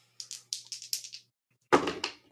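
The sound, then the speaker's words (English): Dice rattle in a quick series of light clicks, then tumble onto a surface with two louder, clattering thuds, a roll to use magic that shows 9. No voices are heard. “That is 9 on the dice.”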